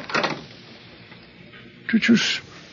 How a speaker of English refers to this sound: Did you see that? The door opened by itself. Obviously, we are being invited in to have a look round.